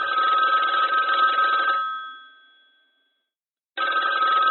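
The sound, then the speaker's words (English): A telephone bell rings loudly for about two seconds, fades into a short silence, then starts ringing again, a bright trilling ring with no voices. “He had been working for about an hour when the phone rang.”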